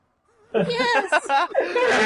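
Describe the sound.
A person imitates a donkey's bray, a loud, strained, honking vocal burst broken into a few quick pulses lasting under two seconds.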